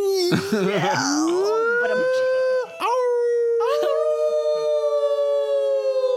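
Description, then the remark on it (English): People howl like dogs in one long, loud howl that slides and wavers in pitch before settling into a steady sustained note for several seconds. “I think we do howl, and I think that... You howl? He howls along with us, I think.”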